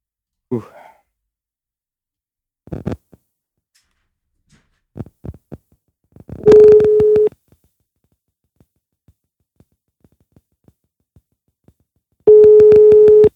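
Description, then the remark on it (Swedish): A telephone ringback tone sounds twice, two steady, fairly loud beeps about six seconds apart, after a breathy sigh and scattered clicks and taps as a call to a seller is placed from Kristinehamn, Värmland, Sweden. “Ja, men då tror jag att du ringer då.”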